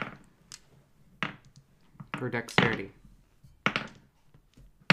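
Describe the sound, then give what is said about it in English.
A player's dice are thrown onto a table during a tabletop role-playing game, clattering in several bursts of sharp taps and thunks, with a busier rattle of tumbling impacts in the middle, while a voice speaks briefly. “Oh no, I'm throwing around all my dice.”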